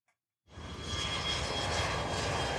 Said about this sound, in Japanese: 飛行機が着きました。女の子は飛行機から降りました。